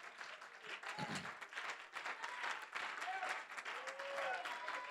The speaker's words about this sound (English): Give the Lord a real good hand clap of praise.